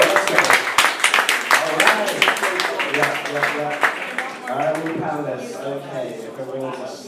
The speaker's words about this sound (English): So without further ado, let's get a big round of applause